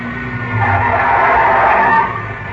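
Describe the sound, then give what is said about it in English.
Another car's tires skid with a loud, sustained squeal over a low engine rumble on an airport road, rising and holding for about two seconds before easing off. “watch out. There's another car coming in.”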